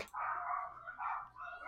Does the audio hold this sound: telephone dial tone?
no